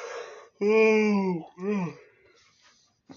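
A person yawns: a breathy inhale swells into a long, loud, voiced groan, followed by a shorter descending sigh and a soft trailing exhale.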